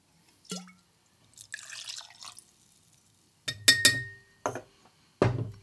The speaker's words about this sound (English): In the pint glass. All right, so vodka in.